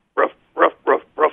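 A voice imitates a dog barking: four loud, evenly spaced barks in quick succession with short silent gaps between them.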